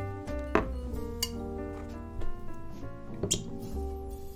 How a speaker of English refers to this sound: Put my whiskey in a Glencairn before I start talking about the history of your boy Elijah Craig. First one in is this Barrel Proof A120. Hallelujah. Let's pour this in Glencairn 1.